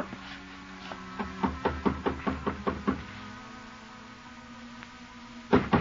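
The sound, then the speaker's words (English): A quick run of about ten firm knocks on a wooden apartment door, followed after a pause by a couple more sharp raps, with a faint steady hum underneath. “climbed the stairs, and knocked on her door.”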